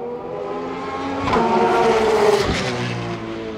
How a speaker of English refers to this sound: Holy Christ, that sounds cool. Yeah, it's really cool. And the other nice thing about these is they're so not sounding like funny cars or F1s or anything like that, or even NASCAR. They sound like, you know, yeah, street Porsches.